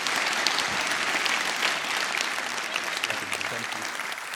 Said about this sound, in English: Give Tony Cooke a hand clap. Thank you.